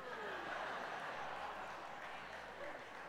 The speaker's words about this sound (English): Okay. I hear all the Carolina fans clapping.